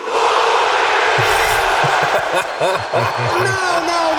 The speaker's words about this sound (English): I want everyone in this arena to scream at the top of your lungs, fuck the Mayweathers